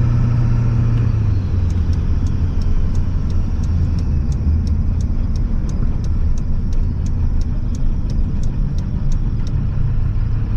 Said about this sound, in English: And I'm going to kind of just pull over on the side street up here and let some of these cars go by. Because I do have one car that came up behind me.